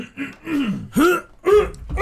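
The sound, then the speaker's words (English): Someone coughs and clears their throat in a quick run of about four rough, voiced bursts, with short pauses between them and no talking. “I'm sorry, I got a cough.”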